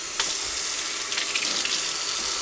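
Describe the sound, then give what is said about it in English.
Cold tap water runs steadily into a pitcher over whole coffee beans, filling it to 8 cups for a double batch of coffee, a continuous hissing splash with brief brighter spatters, fairly loud, with no voices. “So let's run some water.”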